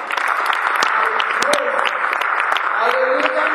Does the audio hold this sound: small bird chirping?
no